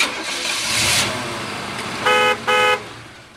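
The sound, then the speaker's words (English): On a cold morning, a car engine cranks and catches with a rough, noisy whir, then settles into a low idle before two short, loud horn honks sound in quick succession. No one speaks. “For a cold morning, that's a good startup.”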